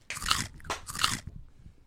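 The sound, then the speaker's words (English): Three sharp crunches of someone biting into a crispy chip, spaced about a third of a second apart, with chewing noise in between and no talking. “Choose them over eating another chip.”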